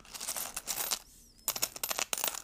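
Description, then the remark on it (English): Crisp crinkling of paper money in repeated bursts, a short pause with faint metallic ringing, then more rustling and light jingling of coins from a change jar, done as ASMR. No one speaks. “It's all my monies. And coins.”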